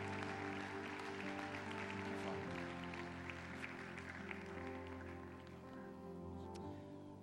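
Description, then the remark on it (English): An audience claps steadily for several seconds as a clap offering to God during a church service, a dense patter of many hands with no clear rhythm, over a sustained musical chord, fading slightly toward the end. “Let's give God a clap offering tonight.”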